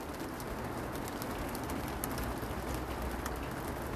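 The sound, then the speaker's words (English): Steady rain patters and splashes across pavement, a dense, even wash of countless small raindrops with no talking, holding at a constant moderate level throughout. “I'm watching as the light falls, all of these little raindrops splatter onto the pavement.”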